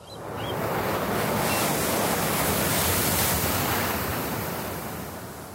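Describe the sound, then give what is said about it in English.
Steady roar of ocean surf, a broad hissing wash of waves that swells toward the middle and slowly recedes, with no voices and a faint breeze underneath. “And when you're out there swimming around, what are you thinking? What's the moment for you when you're out there just connected to the ocean?”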